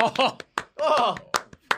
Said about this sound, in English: I hate clapping on the podcast.